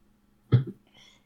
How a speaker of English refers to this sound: Well, I may hate this, so we'll see. Oh. Smells like a Coke. Oh. The hell was that? Hang on, I gotta try this again. Second sip.